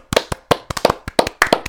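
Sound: round of applause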